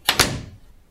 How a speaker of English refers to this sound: Now I have to padlock the doors. I'll start in back.